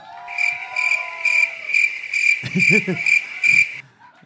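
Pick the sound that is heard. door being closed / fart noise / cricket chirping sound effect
cricket chirping sound effect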